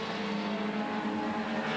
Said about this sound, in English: And here we go. The green flag is out. 22 cars heading down towards the first corner.